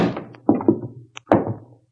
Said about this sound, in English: pushed our way through a door that led to the innards of the place.